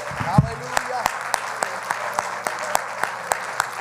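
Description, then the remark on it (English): An audience claps hands in praise to the Lord, with a steady rhythm of sharp claps cutting through a dense wash of scattered applause and faint voices. “Let's clap our hands to the Lord right now and give Him praise.”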